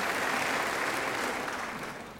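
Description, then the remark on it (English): A crowd at Church of the Palms applauds a member of the 2017 graduating class as graduates are introduced, a dense wash of clapping that holds at an even, moderately loud level throughout and eases off slightly at the end. “Yes, round of applause, always good.”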